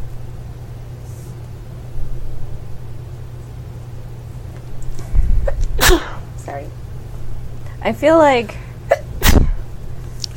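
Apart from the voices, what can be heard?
sneeze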